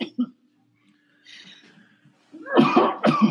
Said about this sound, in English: Bit of a cough.